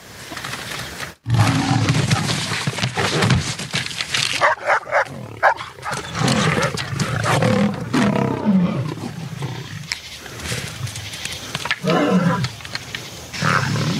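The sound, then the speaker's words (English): Lion roars erupt repeatedly with deep growling snarls, layered over each other in a dense, aggressive stretch after a brief silence near the start; a dog-like whine mixes in. A family of lions taking a hunted deer. “Robert Neville tries hunting a deer, but it is taken by a family of lions.”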